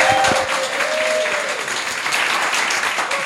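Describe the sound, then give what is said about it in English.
A crowd applauds a panel at the end of a show, a dense, continuous wash of clapping that stays loud throughout, with a few faint whistles or cheers rising briefly above it. “Please, can I have a massive round of applause for this incredible panel?”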